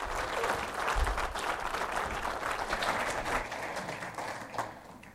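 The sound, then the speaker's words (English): A crowd applauds the graduates steadily, many hands clapping in a dense, continuous patter that holds strong for several seconds before beginning to thin and fade toward the end. “But round of applause for our graduates.”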